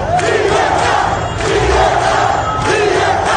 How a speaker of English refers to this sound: No, they're not. Listen to what they're shouting in the streets. Listen to them.